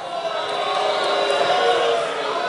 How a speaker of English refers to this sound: Are you booing?